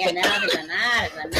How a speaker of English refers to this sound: And start coughing.